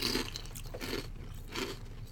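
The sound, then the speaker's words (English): Loud, crisp crunching of dill-flavored kettle chips being chewed during a chip taste test, three bursts of crackly bites roughly every three-quarters of a second, with no talking. “All right, I'm going in for the kettle here. That's a much heartier trip.”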